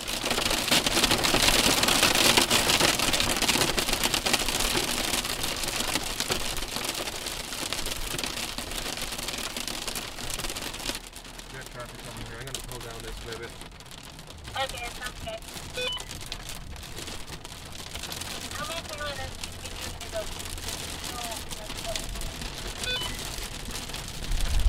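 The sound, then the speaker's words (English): Heavy rain from a large rotating thunderstorm, heard from the side of a small dirt road in Kansas, pours down in a dense, steady roar, then eases after several seconds into a lighter, patchier patter with scattered drips and faint high chirps. “We are stopped at the side of a small dirt road in Kansas underneath a large rotating thunderstorm.”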